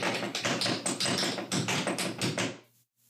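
Quick, steady footsteps patter hard as a man runs back out the front door as fast as possible, running for about two and a half seconds before stopping abruptly into near silence.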